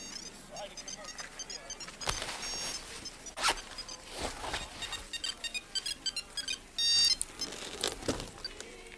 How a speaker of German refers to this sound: Plötzlich klingelte das Handy in ihrer Tasche.